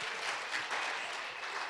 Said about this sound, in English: Can we give a round of applause to Pastor Ben and his wife, Susanna?